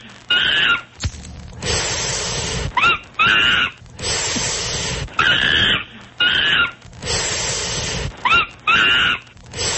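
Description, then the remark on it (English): Loud calls and shrill squeals of a pet monkey repeat in rapid bursts, alternating with harsh, noisy screeching stretches, continuous throughout with no talking. “You know, but monkeys are nasty little animals.”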